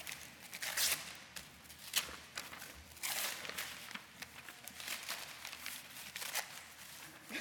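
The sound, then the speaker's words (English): Comic-page wrapping paper crinkles and rustles as it is torn and unwrapped from a Bible, in irregular bursts of crackly handling noise, fairly soft overall, with no talking. “Your Bible is wrapped in comics because it's filled with wonderful stories.”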